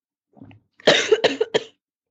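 A woman coughs in a rapid fit: a soft throaty lead-in followed by three or four harsh, loud coughs in quick succession, with no talking.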